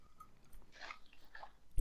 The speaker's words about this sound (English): What is it? What are you doing? I was eating some broccoli, sorry.